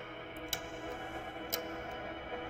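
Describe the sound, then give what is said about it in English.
A clock in a watch video ticks slowly and evenly as time runs out, about one sharp tick per second, three in all, over a steady low background hum with no voices. “The clock is running out as it would be in the competitive moments of a game.”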